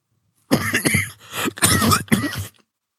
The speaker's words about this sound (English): I've not coughed all morning. Excuse me, I'm sorry.